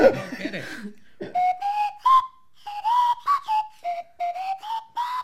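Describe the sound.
A short whistled pop tune played as a clue in a quiz, clear, with a series of bouncy melodic notes in a steady rhythm, preceded by a brief burst of laughter.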